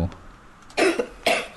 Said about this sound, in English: That sounds like me coughing last week. Yeah. Yeah. I think it's chilies. You think it's chilies, do you? Yeah. Is it that, or she's choking on something?